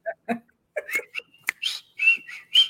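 Someone whistles a short, bouncy TV theme tune, the notes coming in quick bursts with small breaths and gaps between phrases, a little uneven in pitch.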